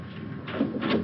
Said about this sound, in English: The door opens